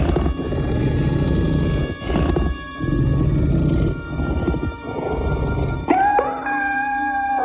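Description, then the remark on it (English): A series of deep, rumbling alien creature roars in long growling bursts, then ending with higher, tonal mewing cries like a cat. Loud, with no talking. “Creature sounds were pretty good, and then it got all kind of cute at the end.”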